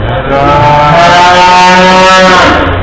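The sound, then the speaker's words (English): A pickup truck's engine roars loudly as it backs over a voice recorder, a steady droning rumble with a strained, whining tone that holds for a few seconds before easing off; no one speaks. “I wanted to let you know that because of the failure of my Balcony Toon Talk recorder, I backed over it with my pickup truck.”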